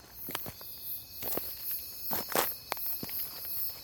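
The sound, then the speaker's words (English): Irregular crunching footsteps tread over dry ground and leaves in Ryan Woods on 95th Street at night under a full moon, heading for the highest hill, about ten steps in a few seconds, while a steady high-pitched drone of crickets and night insects hums throughout. No one speaks. “I'm in the damn Ryan Woods on 95th Street right now, trying to get to the highest hill to view the full moon at its peak”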